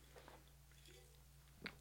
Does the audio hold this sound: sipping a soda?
yes